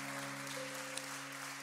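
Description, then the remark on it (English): A large audience applauds its guests steadily, a dense, continuous wash of clapping, with a low electrical hum running underneath throughout. “And to all of our guests, if this is your first time here, can we give all of our guests a great big hand clap?”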